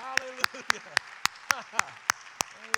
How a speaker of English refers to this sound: So let's show some being here by clapping our hands unto the Lord. Hallelujah.